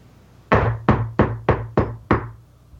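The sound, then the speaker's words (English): Six firm knocks on a door in a steady, even rhythm, fairly loud, each with a solid thud and short decay; no one speaks. “Open that freaking door, because it's me. Knock again?”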